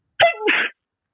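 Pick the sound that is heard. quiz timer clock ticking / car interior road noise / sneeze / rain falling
sneeze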